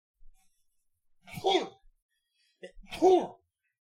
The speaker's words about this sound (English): Oh, boy, I got a sneeze coming. All right.